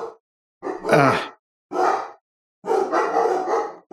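Dogs bark in several loud bursts, one long rough bark followed by shorter ones and a sustained, excited stretch of barking near the end, with no talking.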